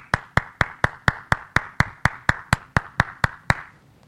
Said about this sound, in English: When I'm doing the podcast, I have to use the sound effect for the applause, okay?